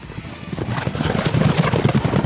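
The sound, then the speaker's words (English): A horse whinnies while its hooves clop in a quick, steady rhythm, the sounds fairly loud, building slightly over a couple of seconds with no talking. “But horses are still here.”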